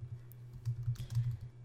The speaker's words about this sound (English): But I'm on Google Flights here. I'm typing in Los Angeles to Lima.